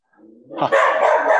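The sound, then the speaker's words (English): A pet dog named Harley gives a short low rumble, then breaks into a loud, sustained bark that carries through the rest of the moment. “But Junkyard Dogs chiming in.”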